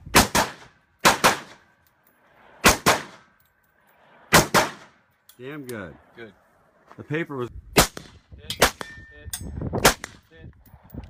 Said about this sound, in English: Doesn't give us much context, but you see how far down range he was shooting. I wanted to see him, like, run through the targets.